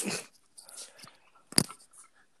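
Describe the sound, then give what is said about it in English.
Quiet mouth sounds of someone gulping water: a wet burst, then softer swallowing noises and a sharp click partway through, with no talking. “Okay, just cut out the sound of me gulping water.”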